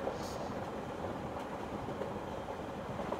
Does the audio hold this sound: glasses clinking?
no